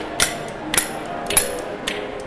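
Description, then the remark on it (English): Four bright, clacking taps of spoons struck against a hand or leg, evenly spaced about half a second apart, ringing faintly between strikes with no talking. “So then the first thing we need to do is just to make sure that if you tap your hand or your leg, you're actually getting a sound.”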